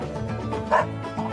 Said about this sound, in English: What dog?